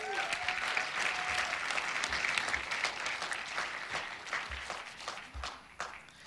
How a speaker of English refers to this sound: Woo, can you give a big clap of to Jesus?